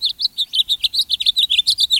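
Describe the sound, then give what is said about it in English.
A bird sings at sunrise in winter, in February, a rapid, steady series of bright, high chirps, about six per second, clear, with no other sounds or voices. “But even in winter, some birds greet the sunrise with song.”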